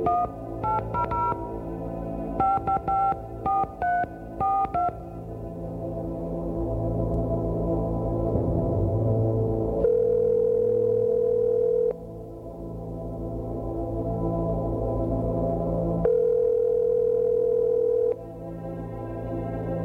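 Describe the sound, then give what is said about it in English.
A quick series of beeping touch-tone dialing tones as a woman phones her ex-husband, followed by a steady telephone tone with long, evenly spaced rings sounding over a low background hum. Nobody speaks. “Involved the ex-wife, lonely, despondent, and reaching out to her husband, her ex-husband, who is now remarried, and she makes a rather odd request in the course of this phone conversation.”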